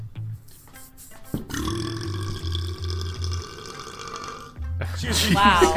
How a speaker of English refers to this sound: Just give me a second, I'm burping here. I got like the fizzles leading to burps.